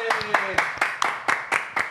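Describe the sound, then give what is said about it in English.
A steady run of sharp hand claps from Messi as he waves his finger, about eight in two seconds at an even, quick rhythm, fairly loud, with a faint tonal hum underneath at the start. “Messi's waving his finger and clapping.”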